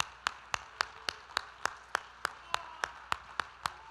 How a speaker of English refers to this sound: Let's clap our hands and thank the Lord together.